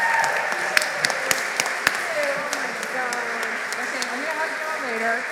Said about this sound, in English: So let's give them, all of them, rounds of applause.